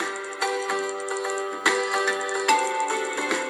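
Bright, bouncy video game background music plays on its own, a chiptune-style melody with crisp note attacks repeating in a steady, upbeat rhythm at a consistent moderate volume.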